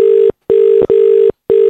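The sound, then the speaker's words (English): A looped recording of a phone ringing tone, played during a phone call to Arnott's, repeats in steady, evenly spaced bursts with short silent gaps, and a brief cut in the middle of one ring gives away the loop. No one speaks. “They were just playing us a loop of a phone ringing.”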